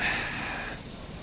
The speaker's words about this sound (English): All right, train's already coming in. It's early. Not complaining.